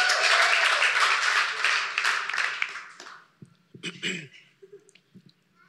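A crowd applauds loudly in a dense, steady burst of clapping that fades out after about three seconds, leaving a few scattered claps and faint rustling.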